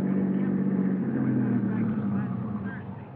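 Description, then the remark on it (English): A car's engine hums steadily as it winds slowly up the driveway to the DeSalle mansion overlooking the ocean at 7:30, a continuous low rumble that eases off slightly toward the end. “By 7:30, we were winding up the driveway to the DeSalle mansion overlooking the ocean.”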